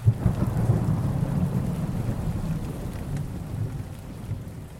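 Deep rolling thunder rumbles over a steady wash of heavy spring rain in Tennessee, falling on the forests around Pittsburgh Landing in early April. The low booms swell at the start and then sustain as a continuous storm roar with no voices.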